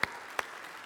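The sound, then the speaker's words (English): Two sharp, separated handclaps at Praise Assembly, about a third of a second apart, then only a low steady hiss. The claps are fairly faint and crisp, with no voices. “Let's give her a round of applause, too.”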